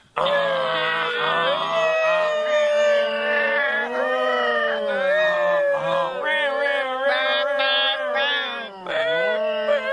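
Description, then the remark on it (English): A crowd of voices loudly imitates a New York City fire truck siren plus air horn, many overlapping wails rising and falling together in a steady, continuous roar for the whole stretch, with no spoken words. “Now, I want to hear a New York City fire truck. Remember, the siren plus the air horn.”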